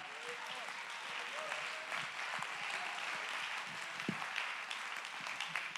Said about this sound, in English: Clap your hands and give him the praise.